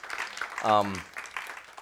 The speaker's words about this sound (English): Any veterans here? If you are here, would you please stand up or raise your hand or let us just thank you and give you all a round of applause.